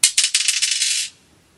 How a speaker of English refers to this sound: Okay, we're ready with dice number 1. Throw the dice number 1. Throw the dice number 2. And number 3.